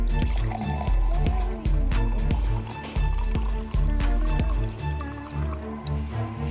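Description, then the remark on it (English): Water glugs steadily into a glass, fairly loud, with rhythmic gurgling pulses and a resonant tone that shifts as the glass fills. No one speaks. “That's a Whiny Monday sound right there. That just makes everybody happy. I just have water today.”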